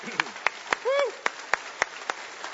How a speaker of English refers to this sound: Let's give him a round of applause this morning.